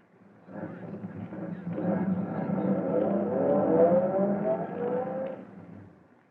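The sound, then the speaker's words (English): A car engine rumbles closer and rises in pitch as it emerges from the shadows at the mouth of an alley and pulls up alongside a waiting police car at a call box, building to a steady, fairly loud hum before easing off near the end. No one speaks. “waits for his car to emerge from the shadows. All right, Vito. Pull up alongside that police car”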